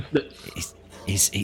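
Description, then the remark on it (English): A human voice imitates a wolf's whine in a few short, breathy bursts, fairly loud, with a brief pause between the first and last sounds. “He's like, and as he says this, the wolf kind of like looks and makes like a bit of a whining noise.”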